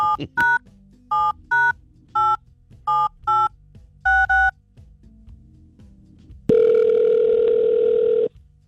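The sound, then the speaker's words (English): A bird sanctuary's telephone number is punched in as a quick series of short touch-tone beeps, followed by a pause and then a steady, buzzing tone that holds for nearly two seconds before cutting off. No one speaks. “So can we call them today? Yes, we got to do it.”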